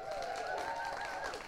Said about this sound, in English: She designed, where is she? Let's give her a cheer.